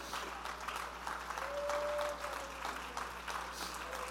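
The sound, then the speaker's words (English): A standing audience claps hands in a steady, dense wash of applause that fills the whole clip, with a faint sustained tone briefly rising above it midway. “Oh, stand to your feet and clap your hands and say, I want my life to mean something.”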